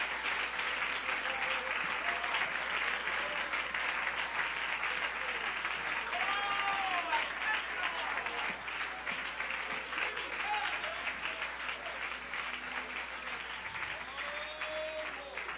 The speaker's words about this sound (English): Give him a hand clap, would you, everybody?